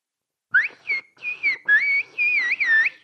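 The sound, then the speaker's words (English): A loud phrase in whistled Turkish, saying "we speak whistle language" (İslik dili konuşuyoruz): several gliding, rising and falling notes in quick bursts, like a short spoken sentence carried entirely by whistling, with no voices. “And how about, we speak whistle language.”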